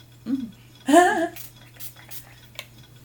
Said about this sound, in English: Because I spray it in the lid.